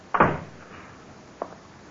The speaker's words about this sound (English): Shut the door, Chester. You can go out or stay in, but shut the door.